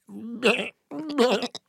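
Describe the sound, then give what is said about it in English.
Someone imitates a sheep, making two wavering, nasal "baa" bleats in quick succession, fairly loud, with a brief pause between them. “And the whole concept was all of these single women who are desperately trying to find a man are all sheep.”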